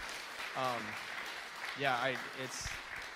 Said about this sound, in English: That's awesome. You guys are great. Can we give them a round of applause for sharing?